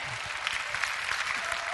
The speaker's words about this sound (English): Quit talking about the devil and start talking about the goodness of God. Somebody ought to give the Lord a clap offering.